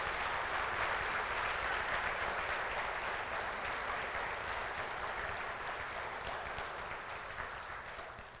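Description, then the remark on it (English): An audience applauds its deacons steadily, a dense wash of many hands clapping at once that holds strong throughout and eases only slightly toward the end, with no voices standing out. “These are your deacons, and I hope that you will give them a round of applause for the work that they do.”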